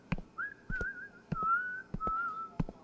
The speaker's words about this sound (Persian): آلن زیر لب آهنگی را سوت میزن